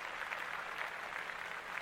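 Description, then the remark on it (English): A steady wash of audience applause fills the whole stretch, dense crackling claps at an even, sustained level with no voices breaking through. “Clap that up.”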